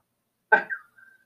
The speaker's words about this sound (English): He's coughing. Give him a second. Who's coughing?